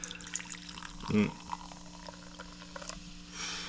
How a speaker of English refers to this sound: It's like dropping a like an Alka-Seltzer tab into water. That's what kind of reminds you of.